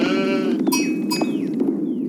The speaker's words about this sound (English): I love those sheep. I joke. That's part of it. I do love gathering the sheep. I do love that noise. I do love that a lot.